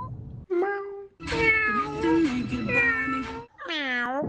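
A single person doing a cat impression meows three times: a short mew, then a long, drawn-out wavering yowl, and finally a shorter rising-and-falling meow, with no talking.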